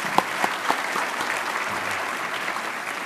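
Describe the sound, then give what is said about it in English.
An audience at a Carter Center event applauds its guests steadily, the dense patter of many hands clapping at an even level, with a few sharper, louder claps standing out at the start. “So we'll give another round of applause for all of our guests here.”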